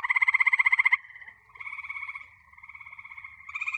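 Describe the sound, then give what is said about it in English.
Frogs croak in a dense chorus of rapid, buzzing trills, loud at first, then slightly softer and overlapping before swelling again at the end. No one speaks. “So that's when I thought, frogs.”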